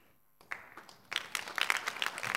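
A few scattered claps start up, then quickly swell into a dense patter of audience applause that keeps building, with no one speaking.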